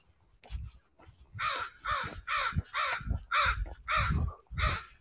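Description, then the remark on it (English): A crow caws repeatedly in a steady series of harsh, raspy calls, about six in quick succession, loud against a quiet outdoor background. “That crow right there that you could hear, I'm sure they're protecting what they love.”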